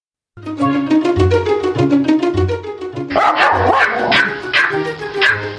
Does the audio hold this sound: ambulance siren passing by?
no